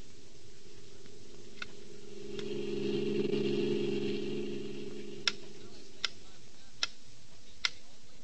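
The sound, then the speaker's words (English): Metronome ticking: sharp, evenly spaced clicks, a few faint ones over a low droning hum, then four crisp, louder ticks at a steady pace once the hum fades. “A metronome, a small, precise time interval measuring instrument that most pianists use.”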